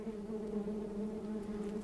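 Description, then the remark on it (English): A wasp buzzes steadily and continuously, a low droning hum with no pauses or other sounds around it. “Most wasp species are solitary creatures who we never even notice.”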